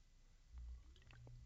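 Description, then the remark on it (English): A quiet sip of water: a soft low gulp followed by a few faint wet mouth clicks and a swallow, with no talking. “Sorry, take a drink of water.”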